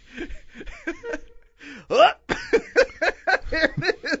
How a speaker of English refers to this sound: Oh my God, that is awesome. I got the hiccups.